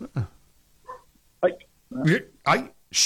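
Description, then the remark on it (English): A dog named Rocco barks several times in short, sharp bursts at an uneven pace, growing louder toward the end, with a faint voice early on, as a lady walks past on her evening walk. “So it's a really nice lady that goes for a walk about this time every night, and Rocco just feels the need to let her know that he's here.”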